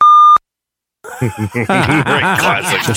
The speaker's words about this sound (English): Keep your finger on that beep button for one sec.